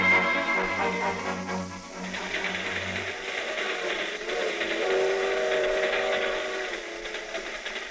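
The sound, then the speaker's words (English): A highball freight train, running from Kansas City into the outskirts of Des Moines, rolls steadily along the rails with a continuous clattering rumble, while a steam whistle's harmonic tone sounds near the start before the rolling noise carries on alone. “When's this here freight train get to Des Moines?”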